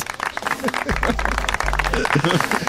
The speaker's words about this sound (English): More applause.